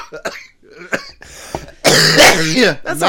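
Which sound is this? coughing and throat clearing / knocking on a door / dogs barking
coughing and throat clearing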